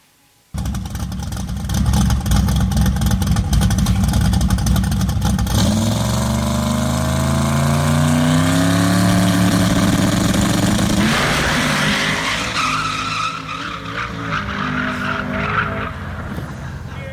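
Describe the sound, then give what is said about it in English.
A loud car engine roars, revving with rising, sweeping pitch for several seconds, then tires screech and skid as the engine keeps growling. No one speaks. “So what's that have to do with us, besides engines?”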